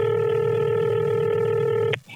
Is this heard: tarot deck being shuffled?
no